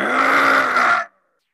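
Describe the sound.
A person lets out a single sustained growl in imitation of an animal, rough and throaty with a steady low pitch, loud for about a second before cutting off into silence.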